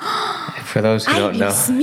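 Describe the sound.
Someone yawns, a breathy intake swelling into a drawn-out, wavering voiced groan that rises slightly in pitch at the end.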